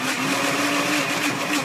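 A blender motor runs hard and steady, struggling to blend frozen fruit, a loud continuous grinding whine that holds one strained pitch without pausing. No one speaks.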